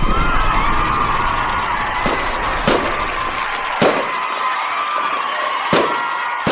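golden buzzer sound effect

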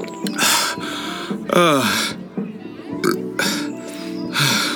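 burp

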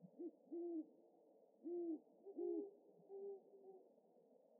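owl hooting outside

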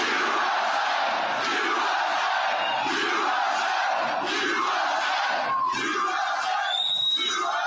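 rally crowd cheering

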